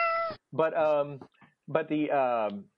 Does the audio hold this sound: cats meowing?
yes